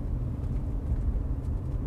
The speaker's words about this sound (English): As the car gathered speed and powered towards the park, a blazing van blocked the road.